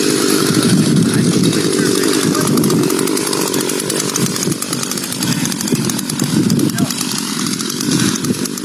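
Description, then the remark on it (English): Chainsaws carried by two shirtless, muscled, tattooed men, one apparently bleeding from the head, in a video posted to Facebook, run loud throughout: a continuous buzzing engine drone with rough, revving fluctuations and a gritty high hiss, with voices faintly mixed in underneath. “And what it shows is two shirtless dudes, very muscled, tattooed, one of them appears to be bleeding from the head, and they have chainsaws.”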